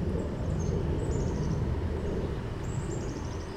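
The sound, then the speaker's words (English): A steady low rumble of road noise fills the background while two short bursts of high-pitched, rapidly repeating squeals ring out, thin and fairly faint, from a car with a twisted rear axle driving away out of sight on another road. No one speaks. “I can still hear it squealing and squeaking down the road.”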